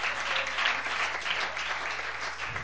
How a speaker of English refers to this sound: Oh, somebody clap your hand. I'm telling you, I am in the Holy Ghost, so help me.